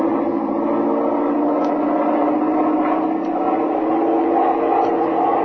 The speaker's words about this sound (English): Throttle back your engine, begin your final approach, and then I'll land it.